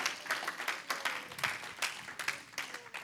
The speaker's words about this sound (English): Give the Lord a hand clap for his word tonight. Great God.